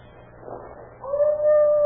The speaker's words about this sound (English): His dog. He's howling about something.